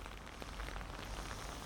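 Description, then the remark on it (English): Steady rain patters down in Castle Park, Bristol, a dense, even hiss of drops striking a surface with faint scattered taps, constant throughout with no voices. “And as they get to Dougie's next stop, it starts raining.”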